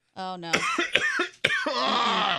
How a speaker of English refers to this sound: I have to cough. Oh, no. It's gonna hurt. Do it. Try to fight it. I've got a broken rib and I have to cough. Fight it off.